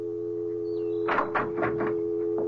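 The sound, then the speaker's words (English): A door opens as someone walks in through it, with a short run of rattling, scraping clatters over a couple of seconds, set against a steady electrical hum, with no voices. “And see what happens when I walk in that door.”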